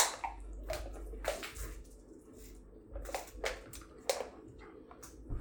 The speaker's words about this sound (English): There is a little bit of air in a beer can. Man, it has been a long time. The science of shotgunning a beer.